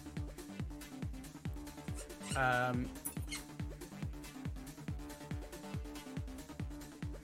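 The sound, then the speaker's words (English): A single high, strained squeak from a squeaky toy being bitten by a dog standing at the end of a desk, lasting about half a second, rising clearly above a steady, rhythmic background of low pulsing sound. “The dog's literally was just sort of standing at the end of my desk, going, just biting down on his squeaky toy, looking at me.”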